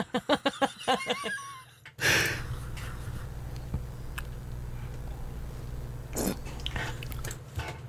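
A quick run of crunchy chewing bites opens, then a loud fizzy burst of bubbling, sparkling noise that hisses on with scattered pops and a low hum underneath.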